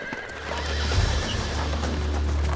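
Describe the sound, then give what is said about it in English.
A horse pulling a sleigh whinnies over the steady clip-clop of hooves, with a constant low rumble underneath; the sounds are continuous, and no one speaks. “Luckily, a group of men from the town had organized a procession of horse-drawn sleighs to rescue children from the schools.”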